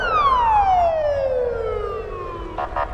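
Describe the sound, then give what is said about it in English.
A loud emergency vehicle siren in Moscow wails downward in a long, sliding tone over a steady rumble of traffic, with a brief pulsing burst near the end. “The sirens could mean an emergency, police, fire trucks, or ambulances.”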